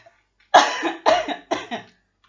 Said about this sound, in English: That's just a little cough.